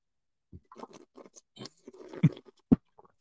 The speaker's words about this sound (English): That, what I just did. Sipping water and then like dumping something so hard that you could hear it is like, and I'm sorry for doing it. I just had to show an example.